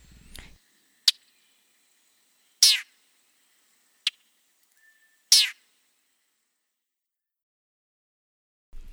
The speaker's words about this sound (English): It's also a very raspy sound, very different from our other warblers. Here are the little call notes at the end that get my attention to listen for the raspy sound of the chat.